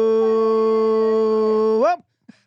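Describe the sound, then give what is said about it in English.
A dog in a studio howls in one long, loud note that holds a steady pitch for nearly two seconds, then bends upward and breaks off, followed by a brief faint sound. “Shout out to my dog who's in studio who starts howling when you do that.”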